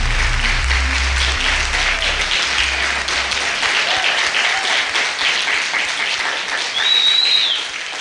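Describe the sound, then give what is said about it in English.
A crowd gives God a hand clap of praise in sustained, dense applause, a steady wash of many hands at once, with some low rumble early on and a brief whistle-like tone rising near the end. “guys give God a hand clap of praise?”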